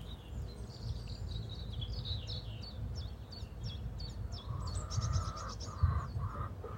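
A hen on an allotment in the morning lets out drawn-out clucking calls in the second half, over a steady low rumble, while small birds chirp in quick repeated high notes throughout.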